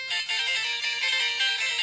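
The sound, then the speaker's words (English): A toilet paper dispenser plays a Christmas song, a tinny, high-pitched electronic melody chiming steadily at moderate volume with no voices. “One person's trash is another person's toilet paper dispenser that plays Christmas songs.”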